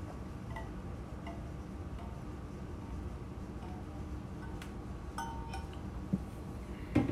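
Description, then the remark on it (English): A few light glass clinks and taps come in irregularly over a steady low rumble, sounding like a glass being handled while water is fetched. Nobody speaks. “I'll put that down. Grab me some water here.”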